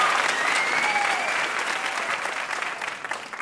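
A crowd claps steadily for a few seconds in one more round of applause for a VIP, a dense, sustained wash of applause from a sizable audience that tapers slightly toward the end, with no speech over it.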